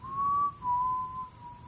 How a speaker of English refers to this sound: Well, you can hear in the background, as soon as she sets it down, a whistle, like a phantom whistle.